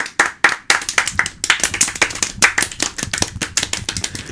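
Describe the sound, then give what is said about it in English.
A small group claps their hands in a round of applause, a quick, uneven patter of overlapping claps that keeps going steadily for several seconds with no talking. “We all picked the most ridiculous way to clap.”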